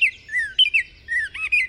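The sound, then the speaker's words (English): A Baltimore oriole sings a short, clear, whistled phrase of a few rich notes that slide up and down, fairly loud, with no voices. “And the short and sweet oriole.”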